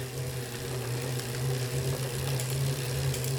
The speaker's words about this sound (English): The Neo is up to the low 70s dB, but the note hasn't changed, still a whir or a drone maybe.